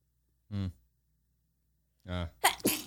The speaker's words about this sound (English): I have to sneeze. Hang on.